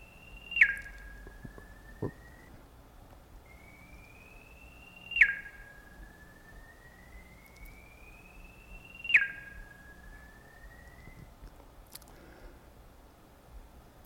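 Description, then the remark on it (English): A steady synthetic tone following a circular path that passes just in front of the listener repeatedly glides slowly upward in pitch, then drops abruptly with a loud swell. It circles around twice with a Doppler-like pitch shift, and no voices are present. “This is the path, and now the sound following the circular path twice around.”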